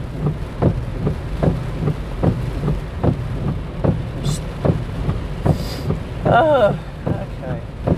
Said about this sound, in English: Rain's calming a bit, so you could probably actually hear me.